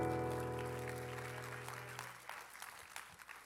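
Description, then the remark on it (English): A church audience claps and applauds after a prayer, giving God a hand clap: a dense patter of hand claps that starts over a sustained, fading musical chord and carries on alone, thinning toward the end. “Let's give God one big hand clap.”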